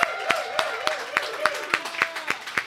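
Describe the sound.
Steady, evenly spaced hand claps, about ten sharp claps in under three seconds, sounding like a small group applauding, with a faint voice running underneath.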